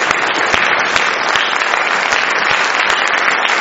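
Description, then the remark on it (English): An audience stands and applauds in praise of the Lord, a dense, even wash of many hands clapping at once, loud and sustained throughout with no voices standing out. “I think that we can stand up and give applause for what the Lord has done.”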